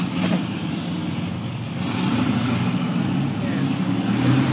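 A motorcycle engine revs outside, a steady muffled rumble that swells and grows louder partway through.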